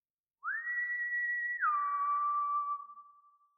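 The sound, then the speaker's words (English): A man whistles a single two-note whistle: a steady higher tone that drops to a lower sustained note, clear and unaccompanied, trailing off with a soft echo off a tall rock wall behind a house. “My eyes widen as he whistles, terrifyingly again, a beat of silence, and then again, that whistle.”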